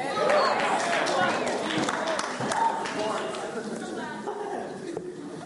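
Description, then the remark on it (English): A crowd at a Christian gathering cheers and shouts together in answer to a question about having victory through Jesus, a dense wash of many voices with some scattered clapping, fairly loud and steady before easing off slightly toward the end. “From that cheer, I don't think many of you know what victory means in Jesus.”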